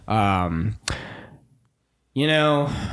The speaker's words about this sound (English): Same thing, knock on wood. Don't want to see anybody get hurt.